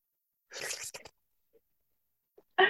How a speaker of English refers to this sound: Okay. Hold on. Let me take a little sip. A little sip of coffee.